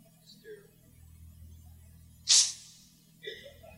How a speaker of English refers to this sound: I want to blow my nose.